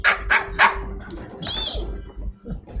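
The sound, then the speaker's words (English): A human voice imitating prairie dog squeaks: three quick, sharp yips in a row, then a longer high squeal that rises and falls, fairly loud over a low rumble. “But whatever noise they're making seems to make sense. It's like, ee!”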